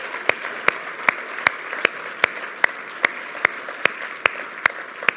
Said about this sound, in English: And so can we together today just give Wayne and Ruth a huge round of applause and give them some honor?